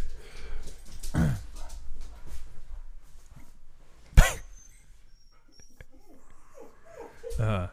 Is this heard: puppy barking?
yes